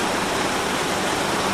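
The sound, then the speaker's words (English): Water rushes forcefully and continuously through the opened second set of sluice gates, opened by pulling a big lever, and starts a giant water wheel turning; a dense, steady roar of churning flow that stays loud throughout. “And the water wheel is starting to turn as the water comes in through the sluice gates with some force.”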